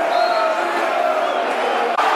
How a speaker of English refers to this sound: And a crowd roaring the Lions on.